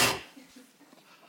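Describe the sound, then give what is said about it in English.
A bug zapper on a porch gives one sharp, bright electric crack right at the start, loud, then fades quickly into a quiet, faint background hum. “That's the bug zapper.”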